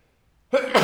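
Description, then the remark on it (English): A single sharp sneeze bursts out after a moment of near silence, a quick inhaled build-up snapping into a loud, breathy release. “excuse me. Bless you.”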